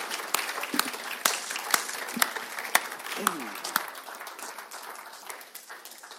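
An audience gives a round of applause for the guests in a dense wash of many hands clapping, with a few sharper individual claps standing out, gradually thinning and softening toward the end.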